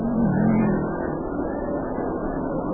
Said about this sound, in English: Well, there he goes. Yeah, the cars will light up as they go around the track, and they'll fall in behind the lead car. And then, if they get the go-ahead flag, if they pass the judges' stand, we'll have a start.